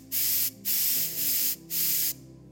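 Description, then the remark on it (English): A can of compressed air sprays in three loud, steady bursts of bright hissing, the middle one longest, separated by brief pauses, used to clear a stuck keyboard space bar key. No voices are heard. “And this guy came back, and he got a can of wind.”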